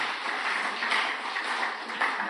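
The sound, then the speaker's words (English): An audience clapping steadily for a couple of seconds, a dense wash of many overlapping claps at a moderate, even level, with no voices over it. “Thank you for clapping.”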